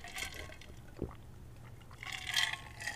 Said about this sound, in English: I'm going to take a sip of my drink so I'm not dying over here.